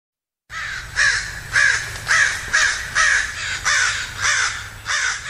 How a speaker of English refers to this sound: Welcome back to Forum. I'm Alexis Madrigal, and those are crows.